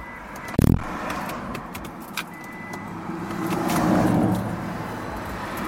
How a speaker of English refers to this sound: Traffic whizzing by in Highland Park. Boulevard.